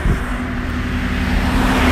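car passing on road

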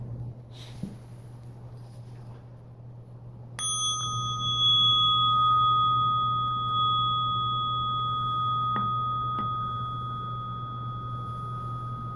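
bell ringing

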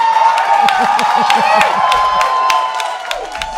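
audience applause and cheering

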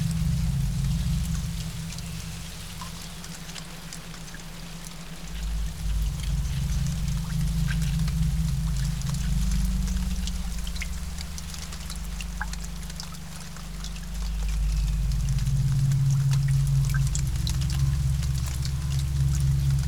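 rain falling

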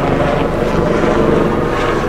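airplane flying overhead

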